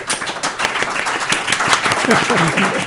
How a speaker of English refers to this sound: Get that clapping noise on the podcast. Live and from Sacramento.